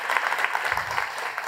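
An audience applauds in a dense, steady patter of many hands clapping at once, holding an even, moderately loud level through the brief moment with no voices standing out.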